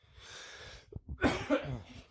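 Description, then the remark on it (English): A sharp intake of breath followed by two quick coughs, harsh and throaty, from a person who is unwell, with no talking. “I'm about to cough in this intro, so I'm going to go real quick.”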